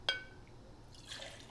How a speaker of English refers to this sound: You just gonna pour the whole cup? My bad. You just gonna pour the whole? You got like two cups of wine in there. You just gonna pour the whole cup? No, don't pour it in my cup. This is a different kind of wine.